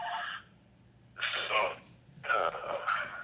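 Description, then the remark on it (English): An incoming call's phone ringtone sounds in three repeated bursts separated by short pauses, moderately quiet against a faint low hum, with no one speaking over it; the call is left unanswered. “So, phone call. I've got another call there, but I'm going to let it go.”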